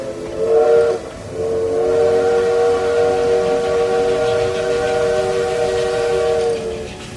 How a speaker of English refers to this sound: The Polar Express let out a loud blast from its whistle.